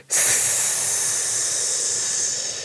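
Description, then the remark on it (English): A long, steady hissing exhale, a snake breath done as a breathing exercise, starts abruptly and holds evenly for over two seconds, fairly loud, with no talking. “We've been doing breathing since we started with snake breaths.”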